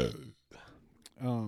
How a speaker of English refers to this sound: You guys both have been burping, and all I can smell is that we're beer.